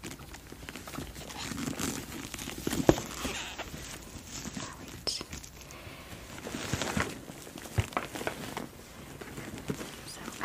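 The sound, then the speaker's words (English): Steady rummaging through a Love Look brand leather work bag, with soft rustles, creaks and scattered light knocks as items shift inside. No one speaks. “Work Bag Tour & My Day Planner 👜 💖 Soft-Spoken 💖 Leather Sounds, Rummaging”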